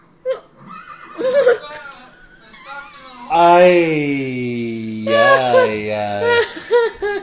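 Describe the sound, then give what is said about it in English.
A police horse neighs loudly in two long, drawn-out whinnies, with a few shorter, softer calls before them and brief voice-like sounds in between. “How? Horse. Police horse.”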